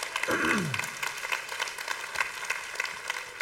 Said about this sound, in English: And I believe that God sincerely wants to affirm and encourage those dads who are making that effort day in and day out. I also believe, yeah, we can clap for those dads, absolutely.